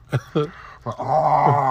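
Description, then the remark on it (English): A voice imitates a monstrous roaring creature, like an eagle with a bear face that could roar: a few short, throaty barks followed by a longer, sustained growling screech, loud. “Like an eagle that could roar.”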